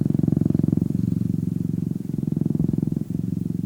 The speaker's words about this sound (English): trying to get her to meow for me. Psst, psst, psst.